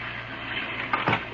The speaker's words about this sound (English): The night was dark, and from the sky fell sheets of silver rain.